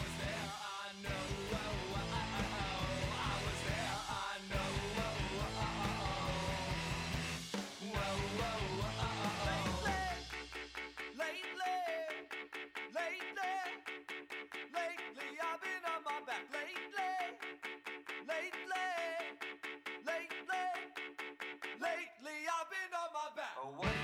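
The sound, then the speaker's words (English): A short instrumental music interlude: a loud, dense full-band passage for about ten seconds, then a sparser, beat-driven section with bright melodic notes that ends abruptly. “We will be back with our thoughts and opinions on The Circle after this musical interlude.”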